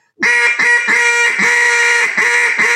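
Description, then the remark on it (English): A duck call blows a loud ringing-style hail, made by closing the throat down for a fine stream of air: about six drawn-out, bright, ringing quacks run back to back in a steady rhythm, with no voices over them. “If you close your throat down and you get that real fine air, that's where you're more getting a ringing style hail.”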